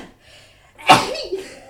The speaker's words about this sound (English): I couldn't mute it. It was just out of nowhere. I'm so sorry. Okay, I'm done. Yeah. It was a sneeze from outer space.